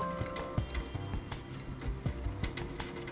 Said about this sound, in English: Know y'all hear that water in the background.